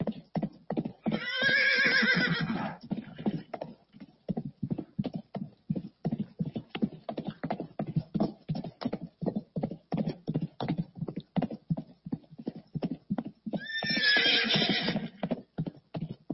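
A horse whinnies loudly near the start and again near the end, while a steady rhythm of hooves clopping runs throughout, close and clear.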